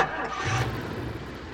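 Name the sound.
car engine starting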